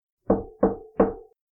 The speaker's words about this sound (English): Crystal knocked on Dr. Vogt's door. She didn't want to knock on Dr. Vogt's door, but she did it anyway.